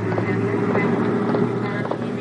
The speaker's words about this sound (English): Hey, that's our plane now, Mr. Thurston. It's taking off.